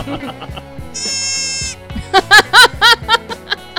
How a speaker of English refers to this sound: Very good deer sound. Did you find deer sound? I did. Give me a second.